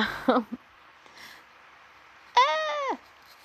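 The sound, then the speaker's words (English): A cat lets out a single drawn-out meow, rising and then falling in pitch, after a couple of brief scuffling noises and a stretch of quiet, as the cat tries to give its owner affection. “Sorry, my cat is trying to give me love, and I'm just like, she's not wanting it to happen, and she doesn't like what I'm doing, so she's trying to fight me,”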